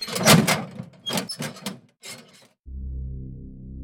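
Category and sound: sound effect, door opening and closing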